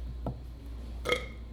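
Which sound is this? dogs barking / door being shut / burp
burp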